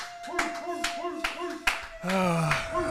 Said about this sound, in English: 10,000 subscribers, everybody. Round of applause for the great fans we have. There we go.